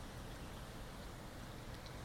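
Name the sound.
rain falling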